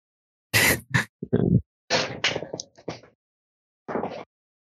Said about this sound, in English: Hey, I hear the chair now. Everybody's talking about it. It's my chair. It's my chair is such a hand-me-down. I think we bought this in like 2019.